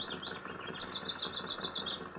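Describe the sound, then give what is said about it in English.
A great cloud of wheeling, crying birds beating their wings, a dense, fluttering whir with rapid repeated flaps and some faint high calls, with no voices present. “and his figure, silhouetted in the driver's seat, would be lost from time to time in the great cloud of wheeling, crying birds which followed his movements.”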